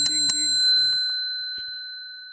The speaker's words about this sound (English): Bell, bell, bell.